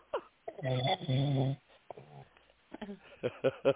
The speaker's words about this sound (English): I just heard a snore.